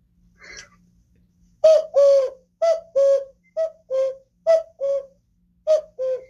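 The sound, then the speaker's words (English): A person mimics a common cuckoo with about five clear two-note 'cuck-oo' calls, each pair falling in pitch, repeated at a steady rhythm with short pauses between. “And the common cuckoo, you probably also know how the cuckoo does.”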